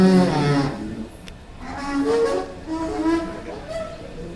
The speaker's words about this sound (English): So here at Farragut North, the escalators might sound like whales mating or something like that.